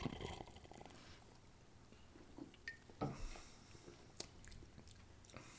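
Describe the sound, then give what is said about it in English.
Quiet mouth sounds of people sipping 1893 original cola: soft slurps, lip smacks and small wet clicks scattered over a few seconds, with no talking. “All right, everybody, let's take a sip.”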